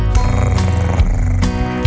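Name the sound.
cat purring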